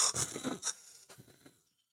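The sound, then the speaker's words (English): A voice imitates Rob Reiner being wheeled out on a breathing machine, with a few raspy, hissing wheezes, fairly loud, in quick uneven bursts that trail off into silence. “On a breathing machine?”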